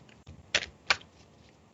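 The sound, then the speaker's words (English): A deck of cards being shuffled, heard as two crisp, papery bursts of flicking cards with a fainter rustle at the end, with no talking. “So give me a moment here as I shuffle, and there they go, and start to let these fly for us as I focus on our group.”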